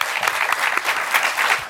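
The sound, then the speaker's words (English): An audience bursts into steady applause for the show Extra Play, a dense crackle of many hands clapping at once with sharp transient spikes throughout, fairly loud and with no voices over it. “Yes, let's clap for that.”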